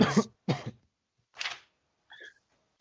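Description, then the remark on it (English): Three harsh coughs in quick succession over a phone line, sounding thin and band-limited, followed by a short throaty vocal noise and then quiet. “…, coughing down the line”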